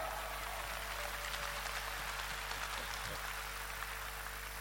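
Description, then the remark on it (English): A church audience claps together during a sermon in a dense, steady, soft patter, carried over a low background hum with no talking. “Even if you don't like it, I'm preaching, so you better like it and clap.”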